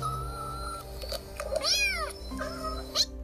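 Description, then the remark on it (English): A box of kittens: several high-pitched kitten meows overlap, one long rising-and-falling cry standing out in the middle and a sharp squeak near the end, over a steady low background hum. “Welp, they realized we need to get these kittens to a vet and the spooky black cat mama too.”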